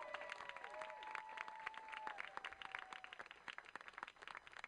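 A crowd claps steadily and loudly, with a couple of rising and falling whistles cutting through early on, and the applause keeps going for several seconds.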